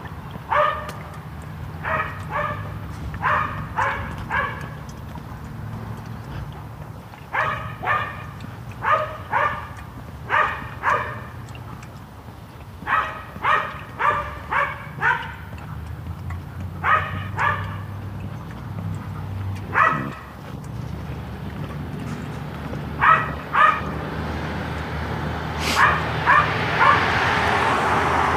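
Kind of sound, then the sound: animal, small dog yapping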